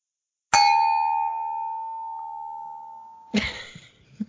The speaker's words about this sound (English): Now, full disclosure, that was a bullshit cheers. I just clung two champagne flutes together that are totally empty and will not have anything in them today.